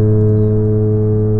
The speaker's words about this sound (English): foghorns. And that's what's driving this week's listener question.